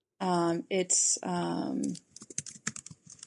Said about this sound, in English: I hear your keyboard. Yes, it is.